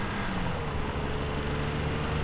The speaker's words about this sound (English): A white pickup truck roared into view.